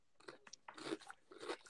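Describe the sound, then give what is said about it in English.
Close-up munching, with moist, crunchy chewing noises in uneven bursts right against the microphone. Nobody speaks. “Can you not be munching, please?”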